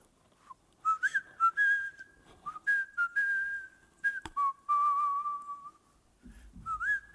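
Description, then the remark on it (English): A person sitting alone in a conference room of a youth center whistles the Elmo's World theme tune, a bouncy, sing-song melody with short phrases and sustained notes rising and falling, ending with a brief rustle or bump. “Okay, and just so that we're clear, like, whistling the tune to Elmo's World is a new thing for me.”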